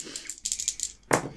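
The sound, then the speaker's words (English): Challenge dice rattle and clatter in a quick series of sharp clicks, then land with a brief, louder tumble at the end, showing a 6 and a 3. No one speaks. “All right, I got a 6 and a 3 for my challenge dice.”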